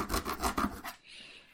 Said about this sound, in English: You're sawing that box open.